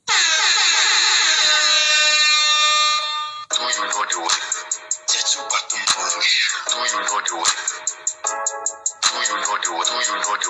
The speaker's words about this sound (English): Let me sound this alarm. I don't want to put y'all to sleep.